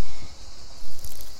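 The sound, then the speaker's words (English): Water is poured onto the ground as an offering to the earth, a steady, hissing splatter that swells briefly louder for a moment before settling back into a soft, continuous trickle. No one speaks. “As I pour this water behind me, I make an offering to the earth to nourish her as she has nourished me.”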